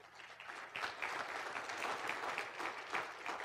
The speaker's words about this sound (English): They gave their lives to Christ. You can clap for that, please.